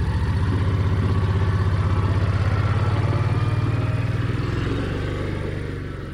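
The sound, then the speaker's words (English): A small garden cart engine on a farm starts up and runs, taking people from the tomato field back to the farmhouse, with a steady, loud, low chugging rumble and some rattling clatter, holding an even pace before easing slightly toward the end. No voices are heard. “Goldman starts up the little garden cart she uses round the farm to take us from the tomato field back to the farmhouse”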